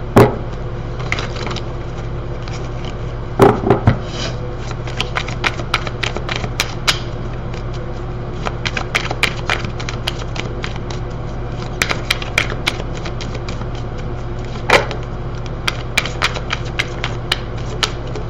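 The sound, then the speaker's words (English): A deck of tarot cards being shuffled, with dense rapid clicks and riffling flutters continuing steadily for the whole stretch, a few sharper snaps standing out over a low steady hum. “I'm going to continue to shuffle.”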